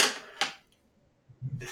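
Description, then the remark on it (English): Pens clatter and rattle in a drawer as someone organizes them, with a few sharp clicks separated by brief pauses and a soft low shuffling near the end. “Yeah, I'm trying to organize all my pens. It's a lot of pens.”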